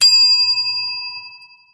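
A single bell is struck once, ringing out clearly with a bright metallic tone that lingers and slowly fades over nearly two seconds. No voices are heard.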